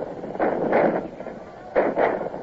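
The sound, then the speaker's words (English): Two booming bursts of enemy cannon fire, each a rolling, muffled roar lasting about half a second, separated by a short lull over a steady windy rumble. “And here come their cannon.”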